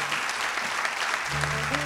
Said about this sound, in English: So give him another huge round of applause, please. Thank you.